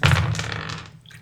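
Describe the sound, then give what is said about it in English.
A short burst of liquid pouring into a glass, fairly loud, splashing strongly at first and then tapering off over about a second, with no voices. “And I'm going to pour myself some 12 here.”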